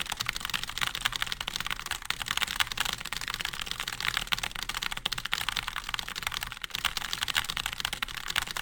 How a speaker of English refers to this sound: His fingers on a keyboard.